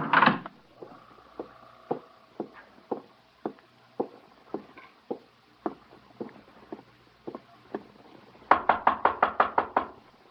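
Steady knocks on the wooden door of hotel room 812, Lomax's room, about one every half second, then a sudden burst of rapid, heavy pounding near the end as someone tries to break it down. Fairly loud, with no voices.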